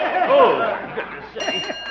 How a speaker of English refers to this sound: there's the bell. Guess Emily's got lunch